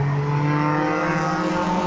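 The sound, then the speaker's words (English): Steady engine drone of road traffic, a loud motor hum with rising tones as vehicles pass, continuous throughout with no talking. “But even the traffic makes me think of like an alien, not arboretum.”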